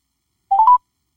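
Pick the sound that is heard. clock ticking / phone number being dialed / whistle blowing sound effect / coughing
phone number being dialed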